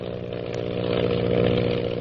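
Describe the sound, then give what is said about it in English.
A powerful plane engine drones steadily as Lily DeVril's plane zooms on in flight, a loud buzzing roar with a strong low hum that swells slightly over two seconds, with no voices. “Lily DeVril's powerful plane zooms on in an attempt to elude the mysterious pursuer.”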